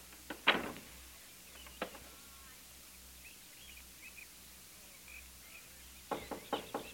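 A door is shut with a sharp thud near the start, followed by a single click, then after a quiet pause a cluster of metallic rattles and clicks as it is locked, over a low hum.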